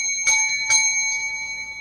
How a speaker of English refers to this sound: We love that bell.